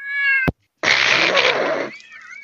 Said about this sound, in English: There was a meow there.